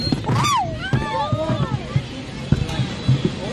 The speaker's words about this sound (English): Nice gust of wind.